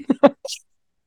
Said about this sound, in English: Did you change the audio quality back? Not that it matters since I'm coughing. Yeah, when you cough directly into the mic, it doesn't really matter what you're using.